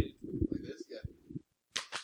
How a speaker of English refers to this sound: All right. Can I get a high five for that? Woo!